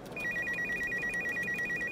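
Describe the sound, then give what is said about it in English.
A telephone rings at a police station with a rapid, trilling electronic warble, steady and fairly loud, sounding alone with no voices over it. “The phone rang.”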